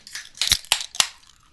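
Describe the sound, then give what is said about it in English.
Three sharp metallic cracks in quick, uneven succession as drink cans are popped open, each followed by a short hiss of fizz. No one speaks. “Should we pop these and learn about the blue? I think we should pop them open.”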